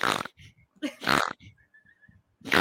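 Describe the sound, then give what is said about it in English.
People make pig noises with their voices: loud, nasal oinks and snorts, several bursts in quick succession with softer low grunts in between. “Is this like Two Little Pigs and Lacey Lou?”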